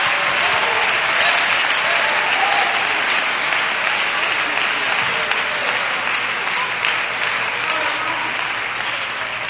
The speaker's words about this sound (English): Let's clap our hands and love Jesus a little bit.